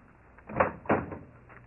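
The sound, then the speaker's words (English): A front door is opened with two quick wooden clunks about a third of a second apart, the latch catching and then the door swinging, against a faint hush with no voices. “Oh, Daddy, answer the door.”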